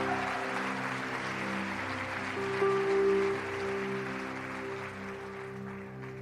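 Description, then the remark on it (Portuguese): A church audience applauds steadily for several seconds, a dense wash of clapping over sustained keyboard chords, with one brief brighter note swelling midway. “Vamos dar mais uma salva de palmas para essa galera, glória a Deus.”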